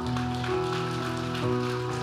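A church audience applauds a family at a child dedication in a steady, dense wash of clapping that holds for the full two seconds, with sustained musical tones humming underneath.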